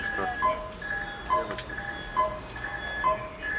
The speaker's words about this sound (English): This is what we were talking about earlier, that the tension is done entirely by sound. The beeping of the probe as it gets closer to the whatever.